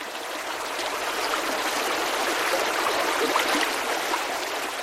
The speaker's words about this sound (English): In the Kootenai Mountains of British Columbia, a pristine creek gurgles through a snow-crusted forest. Cold, clear, fresh water.